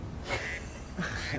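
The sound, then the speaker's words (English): Two short, nasal duck quacks sound about a second apart, a phone's text message alert tone, clear with no one talking over them. “I come through and she's the duck.”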